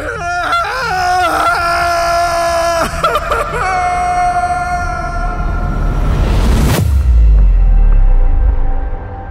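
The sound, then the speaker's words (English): A person screams in horror, a long, loud, wavering cry that ends in a harsh burst of noise and a deep, rumbling low tone. “And all I could do was scream.”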